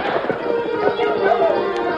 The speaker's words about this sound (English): The great white stallion galloped down the slope, straight for Thundercloud's wigwam.